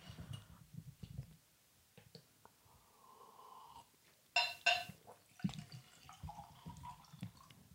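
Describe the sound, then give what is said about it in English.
Whiskey is poured into a heavy glass: a soft gurgling trickle of liquid, then a brief louder clatter and splash, fairly quiet, with no one talking. “Just going to pour another one.”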